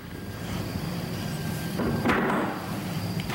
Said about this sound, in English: Really sounded like somebody touched the door handle.